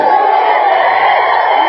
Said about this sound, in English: I mean, they're clapping for that.